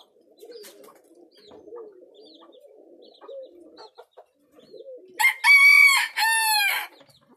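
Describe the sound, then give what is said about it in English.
Soft, low doves cooing steadily in a repeating murmur in a small pen, then a loud rooster crows twice, drowning them out near the end. No one speaks. “They've got some doves in the background, pigeons.”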